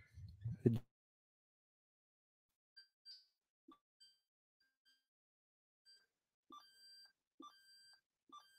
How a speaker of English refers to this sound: You get the bell. You get the bell, Lee Manning.